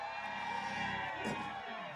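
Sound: audience screaming and cheering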